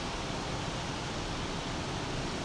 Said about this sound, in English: This pine warbler in the red pine is next to Highway 6. So this is pretty loud. Thankfully it's not like a 400 series highway or something. This is a highway with intermittent traffic.